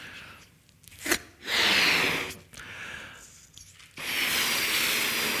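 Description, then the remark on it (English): A balloon being blown up: three long, forceful breathy puffs of air, separated by brief pauses and a sharp snatch of breath, with no talking. “It was hard to have a fully blown balloon in my back pocket, so I'm going to have to blow it up now.”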